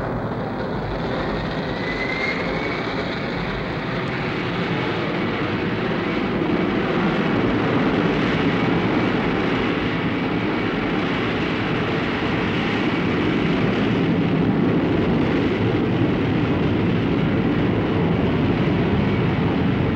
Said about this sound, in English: Mission Control, this is Mars 295, ready for departure. 295, roger. Countdown is go at T-minus 5, 4, 3, 2, 1. Ignition.